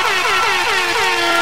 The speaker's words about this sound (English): Oh, shit. We got sirens.